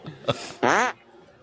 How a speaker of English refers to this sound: Scaring people with farts.